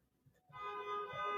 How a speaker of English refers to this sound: Yeah. Someone's got... I know, I hear the... Angry traffic outside.